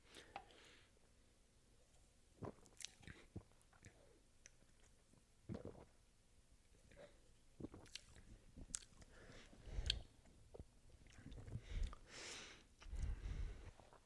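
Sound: sipping an energy drink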